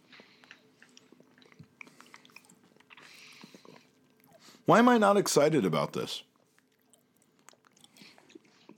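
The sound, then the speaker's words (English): Quiet chewing of a crunchy, sticky chocolate toffee macadamia snack, with soft irregular crunches and wet clicks throughout; a person speaks briefly and loudly in the middle before the munching continues. “Got the kind of sticky toffee crunch as well as the kind of softer, more yielding crunch of the macadamia.”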